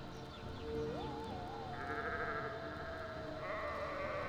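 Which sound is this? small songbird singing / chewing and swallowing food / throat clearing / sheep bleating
sheep bleating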